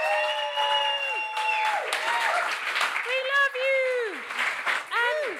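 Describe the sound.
A live comedy audience applauds steadily for the comedy duo Flo and Joan, with loud clapping throughout while several voices whoop and cheer over it in rising and falling shouts.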